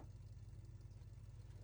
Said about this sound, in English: There's a truck stopping.